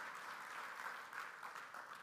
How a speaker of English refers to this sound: Give them a round of applause, would you? Appreciate y'all.